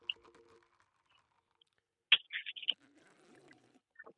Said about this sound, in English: Everyone can hear me chew into the microphone. Oh God. It tastes like pumpkin bread.